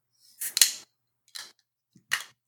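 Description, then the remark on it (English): A door lock clicks shut in a few sharp metallic snaps: a louder double click first, then two quieter single clicks spaced apart, with silence between them and no voices. “Oh, I locked it. I also locked the door to the sidebar.”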